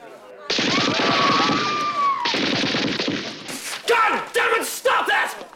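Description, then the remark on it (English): A man's voice imitates rapid machine gun fire as a gag by the film character Larvell Jones, a loud, dense stream of staccato bursts broken by a brief pause, then ending in a few sharper, higher shouted blasts. “You gotta admit, it's a pretty good gag where he starts making the machine gun sounds and everyone.”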